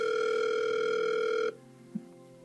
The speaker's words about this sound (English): The phone appears to be ringing. This is a little unexpected. I hadn't asked for anyone to call. The phone is ringing, folks. The phone is ringing, folks. I'm going to answer.